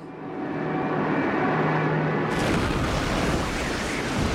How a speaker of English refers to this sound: The plane crashed!